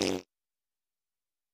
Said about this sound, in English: I am sorry that I farted. I feel that I have ruined the moment.